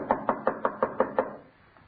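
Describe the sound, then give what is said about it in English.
Seven quick, evenly spaced knocks on the wooden door of a house, fairly loud, rapping in a steady rhythm before falling silent. No one speaks. “Where's that blasted bell? Oh, it was out of order when I was here. I had to knock.”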